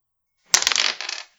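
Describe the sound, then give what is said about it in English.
A small die falls during a tabletop role-playing game and clatters on a hard surface, with two sharp impacts followed by a brief rattling roll that fades out. Fairly clear, with no talking over it. “Oh, one of my dice fell.”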